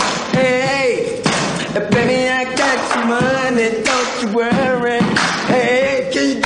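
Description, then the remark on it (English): Voices sing a loud, steady melody while heavy stomps and sharp claps strike in a regular, driving rhythm roughly every half second to second underneath. “Oh, dude, that's stomping and clapping and singing.”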